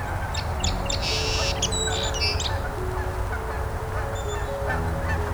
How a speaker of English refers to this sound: A couple Canada geese overhead.